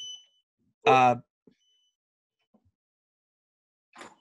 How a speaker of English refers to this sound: Is that a phone? I had an alarm on that. Yeah, that it was a timer. Sorry about that.